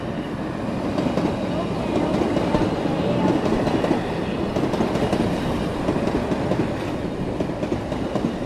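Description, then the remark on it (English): A train rumbles past, loud and steady throughout, its wheels clattering rhythmically over the rails in a continuous roar that fills the whole stretch. “Oh, wait for the train.”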